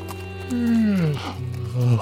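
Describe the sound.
A person vocally imitates a lion's roar, a loud, drawn-out growl that slides downward in pitch, followed by a shorter rumbling growl, alone.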